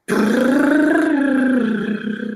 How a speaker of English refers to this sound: So a lip trill is an exercise, is a warm-up exercise. I start all my lessons with this